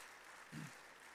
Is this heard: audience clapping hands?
yes